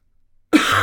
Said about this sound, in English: My God, I have like, do you ever have like one piece of phlegm? Yes. That just like, no matter how hard you cough, it just like won't. It's like, no, I'm holding on. This is my spot.